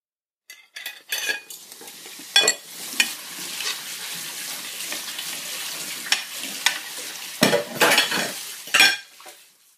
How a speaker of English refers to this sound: So I was just doing the dishes, and I've come to a realisation, actually. Why do you always do the dishes, in the middle of a podcast? Why can't you just wait till the end?